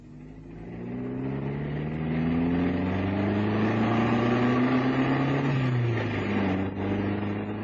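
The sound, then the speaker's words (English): A car engine hums steadily as the vehicle drives, its low droning pitch rising and falling gently with changes in speed. No one speaks. “You drive very well, Mr. Cannon.”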